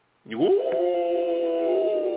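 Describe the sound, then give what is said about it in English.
A person imitates a wolf howl: one sustained, rising then steady harmonic wail that starts abruptly and holds for about two seconds, loud, with no other sounds. “You howl like a wolf.”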